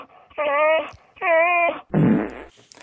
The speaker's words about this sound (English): Chewy out of Star Wars? No, this is actually some kind of a dog whining. Someone should take that dog to a vet. It does almost sound like a human, doesn't it?